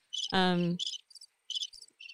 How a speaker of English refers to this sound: Let's see. Oh, crickets chirping. That's kind of good too.